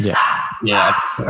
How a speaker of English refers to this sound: As you can hear in the background, my dog Dusty agrees with that.